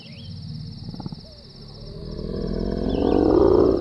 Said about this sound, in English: It had been a low, rumbling growl. No animal he knew made such a sound.